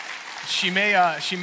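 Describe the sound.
Audience applause fills the room as a steady crackling wash, with a voice speaking over it partway through, the clapping continuing underneath.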